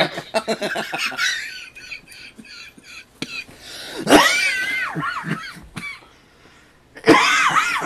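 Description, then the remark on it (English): A burst of rapid, choppy laughter breaks into harsh coughing fits, loud, with strained high-pitched wheezy sounds between bouts and a brief quiet pause before another loud coughing laugh. “Don't try to cough and laugh at the same time. It doesn't work.”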